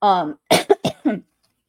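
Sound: cough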